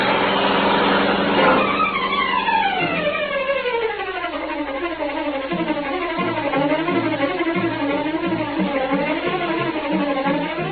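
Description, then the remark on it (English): The powerful black car of the Green Hornet roars loudly and continuously through city streets, its pitch sliding down at first, then rising and falling as if shifting gears through traffic, with no voices and a thin, band-limited tone. “Once more, the powerful black car roared through the city streets, carrying the Green Hornet on his errand of justice.”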